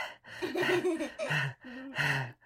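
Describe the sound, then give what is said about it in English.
A voice imitates panting with about four quick, breathy, voiced huffs in a row, fairly loud, with no talking around them. “And brush and brush and brush and brush till all the snarls were out of her hair and her hair just lay there panting on her head.”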